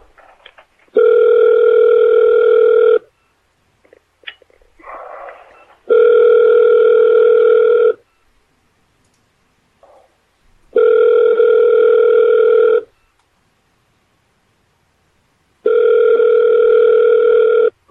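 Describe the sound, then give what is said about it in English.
A phone line ringback tone purrs in four steady two-second bursts, evenly spaced with quiet gaps between them, clear and fairly loud as a call waits to connect to the next available representative. “Please wait while we connect you to the next available representative to fulfill your request.”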